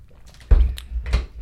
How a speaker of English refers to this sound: Did you hear the sound effects coming out of there? What? You just got a Jolly Rancher in your mouth, so all you hear is... Yeah. Oh, that's gross.